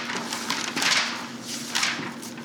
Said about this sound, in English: That's us turning the page. Yep. Multiple pages. That was like 6 pages. Yeah, that's a lot of pages.